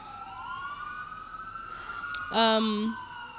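An emergency siren wails steadily in the background, its tone slowly rising, with a brief louder, buzzy blast near the end before the wail continues.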